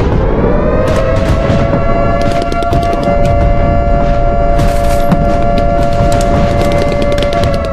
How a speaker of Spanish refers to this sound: Mientras tanto, los rehenes que se encontraban en los pisos inferiores, frente al descomunal ruido de los disparos y el rápido ingreso de los tanques, se vieron obligados a permanecer en el piso y con las luces apagadas durante muchas horas